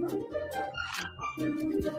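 Dogs whimper and yip steadily, their high, wavering cries running through the whole moment at moderate loudness, coming from a video being played.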